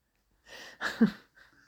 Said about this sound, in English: Okay. I feel bad that we're coughing on this, on the podcast.